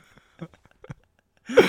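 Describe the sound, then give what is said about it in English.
A few faint, scattered breathy clicks, then a single sudden sneeze bursts out loud and sharp at the very end, with a brief voiced edge. “You get a sneeze.”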